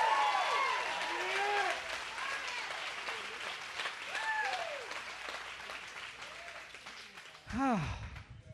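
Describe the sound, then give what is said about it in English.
A church audience bursts into sustained applause for the Lord during a morning service, dense clapping mixed with scattered shouts and cheers that rise and fall, with a loud whoop swelling near the end. “Now give the Lord a shout and a clap this morning.”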